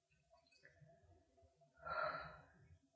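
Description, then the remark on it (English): A single heavy, raspy breath from a person with asthma swells up loud midway through, then fades, over a low rumbling background with a faint voice murmuring earlier. “What you breathing hard for?”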